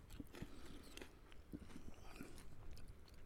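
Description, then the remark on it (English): Crunching of Skips prawn cocktail flavour corn snack crisps being bitten and chewed, a steady run of crisp, crackly bites and munches with no talking. “They literally crunch and melt in your mouth at the same time.”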